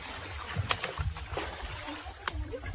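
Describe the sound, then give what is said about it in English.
Irregular watery splashes and sloshing from a man swimming in what looks like a lake, right by a pier, holding himself up on the pier, with several sharper splashes over a low, steady rumble and no talking. “All right, to explain it, there's a man like swimming in a little, it looks like a lake, probably.”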